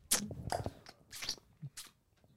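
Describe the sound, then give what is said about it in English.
Wet, smacking mouth sounds of someone sucking on fingers, a handful of short slurping bursts with sharp hissy clicks spread unevenly over a couple of seconds, fairly quiet, with no talking. “just sucking his fingers, bro.”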